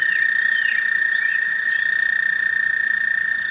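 A sustained, high musical trill from American toads drones on without a break, loud, with faint chirps from other calling frogs scattered in the background.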